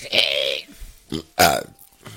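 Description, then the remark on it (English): A couple of loud burps, the first drawn out and rumbling, followed by a short voiced grunt and a second sharp belch, with no talking. “Hiccup, burp, and fart.”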